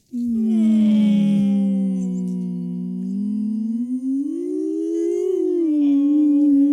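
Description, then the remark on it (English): A person imitates a beluga whale call with one long, loud, wavering hum-like tone that dips and rises in pitch for several seconds, sustained without a break. “That was a beluga whale.”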